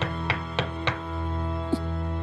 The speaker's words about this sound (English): And then they're like, what? And then it just keeps knocking. And then they open the door.